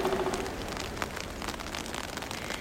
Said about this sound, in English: It rains all night at Strupp Lake, petering out to a drizzle the following day on a long, mostly flat trail through woods.